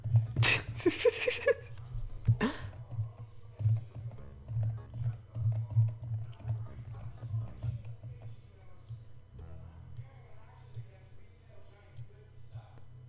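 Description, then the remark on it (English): Dice being shaken and rolled: a burst of small hard objects clattering together, followed by a single sharp clack, then scattered light clicks over a low hum and faint voices. “Stop with the dice!”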